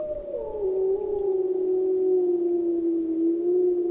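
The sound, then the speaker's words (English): A single long wolf howl, a steady mid-pitched tone that starts a little higher and slides gently downward, holding strong for about four seconds with no other voices. “How do you find each other? Well, you howl.”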